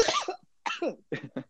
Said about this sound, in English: I felt that. this guy just sneezed himself across the fucking roof.